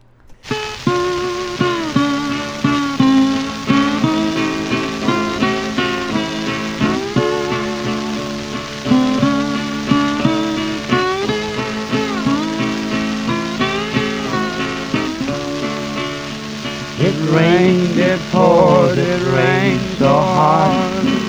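An old string band recording from 1930 plays steadily with plucked strings in an even rhythm under constant surface hiss, and sliding, wavering tones come in louder near the end.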